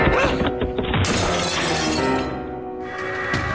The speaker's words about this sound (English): Afterward, he retained a mad, confused impression of smashing his way through a dusty, cobwebbed window